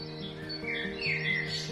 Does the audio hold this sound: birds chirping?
yes